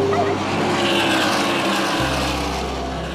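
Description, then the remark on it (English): Loud, continuous roar of race car engines, with a sharp drop in engine pitch partway through as a car speeds past amid constant rushing noise. “Watching the race cars go fast.”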